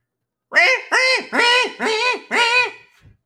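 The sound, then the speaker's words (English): A person imitates a goose, letting out five loud, nasal honks in a quick, steady rhythm, with no talking around them. “could you do your best goose impression up for us and see if this brings terror?”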